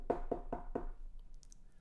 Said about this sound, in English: imagine Joseph showing up at the family home in Bethlehem, knocking on the door